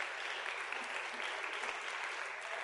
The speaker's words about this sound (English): Maybe give them a little round of applause.